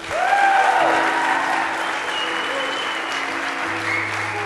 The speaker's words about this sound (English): So as I call your name up, everybody clap.